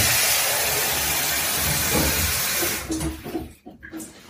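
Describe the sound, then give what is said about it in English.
The final lot of water pours steadily into an Instant Pot, bringing it to almost the 3-litre mark, with a loud, even rushing hiss for about three seconds, then a few sputtering splashes trickling to a stop. No one speaks. “And then that's the final lot of water going into the Instant Pot.”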